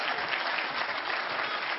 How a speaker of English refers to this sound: Somebody ought to give Him another clap of praise.